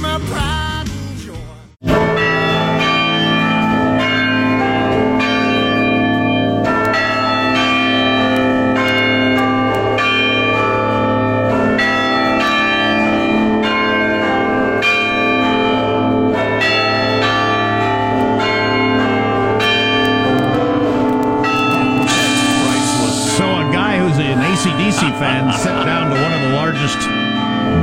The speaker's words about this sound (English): I believe technically there was the largest set of church bells in all of Europe.